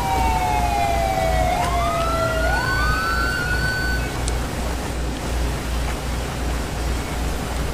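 A police siren wails with rising and falling sweeping tones, fading out after a few seconds, over a steady low engine rumble that continues throughout. No one speaks.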